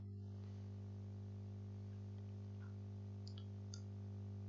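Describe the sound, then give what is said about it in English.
A brief rustle, then two or three faint, quick mouse-button clicks a moment apart as someone clicks a randomizer button to pick a year, set against a steady low electrical hum with no one speaking. “Clicking the randomizer now.”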